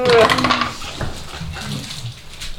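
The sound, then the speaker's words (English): Dice, rolled twice for a roll at disadvantage, clatter across a hard table in a quick, bright rattle during the first half second, then the sound thins into softer knocks and low background murmur. “Why did I hear you roll twice?”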